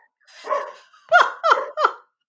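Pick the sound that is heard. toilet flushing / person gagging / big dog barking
big dog barking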